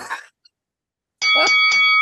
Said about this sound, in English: Ring the bell.